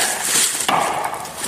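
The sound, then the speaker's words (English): A single sharp, hollow knock of a stick striking a tree trunk, a Bigfoot tree knock, cuts through a steady outdoor hiss, with no voices present. “That's it. Knocking on trees.”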